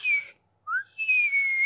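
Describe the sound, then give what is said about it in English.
A person whistles an imitation of a high-pitched low-high-low three-part whistle pattern: a shrill, slightly falling note, a brief softer lower chirp that rises, then a long, steady high note, all with no talking. “That's a high-pitched pattern of low, high, low.”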